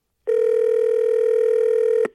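A steady, unbroken telephone dial tone hums loudly for about two seconds, then cuts off with a brief click. No voices are heard.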